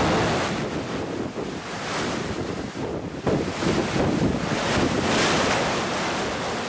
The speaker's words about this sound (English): Maria is the first Category 4 to hit there in nearly a century. 150-mile-an-hour winds ripping buildings apart, knocking out power everywhere.